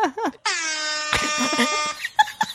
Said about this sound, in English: Every podcast I'm on eventually gets taken over by air horn. The air horn sound effect has given me so much joy. Guys, do yourself a favor. Your self-care this week. Download an app with the air horn sound and just use it in your life.